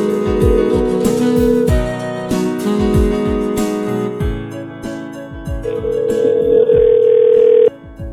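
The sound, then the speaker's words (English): A telephone rings with loud, steady electronic tones that hold and shift in pitch over a rhythmic low thumping beat, with no one speaking. “I can hear ringing.”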